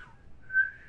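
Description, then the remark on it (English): A person whistles a brief tune, a clear tone that dips, pauses for a moment, then swells into a sustained higher note. No one speaks. “That whistle.”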